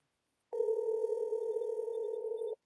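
A single steady electronic ringback tone, the burr heard while a phone call rings out, lasting about two seconds at moderate volume, with nothing before or after it and no voices.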